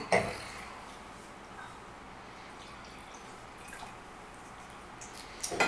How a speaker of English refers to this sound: And Okay, let's aerate the hell out of this Cornas glass.